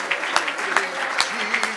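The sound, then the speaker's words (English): A church audience claps their hands during a worship service in a steady, fairly loud stream of overlapping claps, with sharper individual slaps standing out and voices faintly carrying underneath. “Oh, I wish somebody would clap your hands and love him for a minute.”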